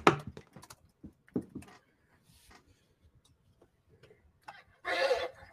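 horse neighing and whinnying

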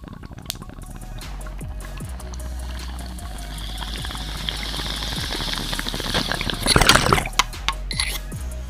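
bong water bubbling

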